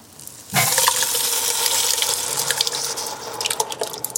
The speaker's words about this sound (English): Okay, so here's our big can. I'm going to hand it to you and just pour it right in there. It's going to make some good sounds and steam a little bit.